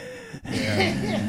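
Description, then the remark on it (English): A voice imitates heavy, labored breathing of someone very stoned while playing online video games: a short pause, then a loud, breathy, rasping drag of air with a faint voiced groan underneath, lasting about a second. “And my friends would always fucking yell at me playing online video games because they'd be like, "Who the fuck is breathing like that?"”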